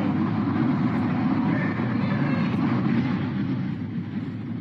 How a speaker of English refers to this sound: And you can listen here to a storm that roared through a community that was just south of Indianapolis. Oh, this tornado's devastating. Listen to that.